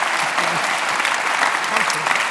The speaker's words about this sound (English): Let's just make that round of applause a bit of a happy birthday round of applause